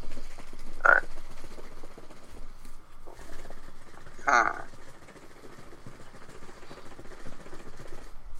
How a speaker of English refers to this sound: Oh, my fault. That ain't me. But that's me shaking the baby bottle.